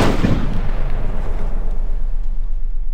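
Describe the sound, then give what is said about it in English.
A single heavy cannon shot from a ship booms out loudly, then rolls into a long, low rumbling echo that fades slowly over several seconds, with no voices. “One of the fascinating parts of this to me was the fact that these heavy guns or cannons on ships weren't always used for firing at other ships.”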